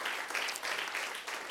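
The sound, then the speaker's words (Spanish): Steady audience applause given for God after a prayer, a dense crackle of many hands clapping at once, fairly loud and continuous with slight swells, and no talking over it. “Muy bien, pues vamos a darle un aplauso a nuestro Señor, a nuestro Rey, Dios Todopoderoso.”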